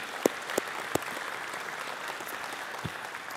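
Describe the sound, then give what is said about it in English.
A church audience applauds steadily to thank its volunteers, a dense, even patter of many hands clapping at moderate volume, with a few sharper individual claps standing out early on. “So can we just clap for that?”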